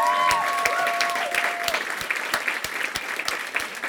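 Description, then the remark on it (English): A crowd applauds a band in steady, dense applause, with many overlapping claps and a few sharper ones standing out. Whistled or sung tones trail off early, leaving only the clapping. “I mean, I know we gotta go, but can we just clap it up for the Black Boy Joy that's going on in the back of me right now?”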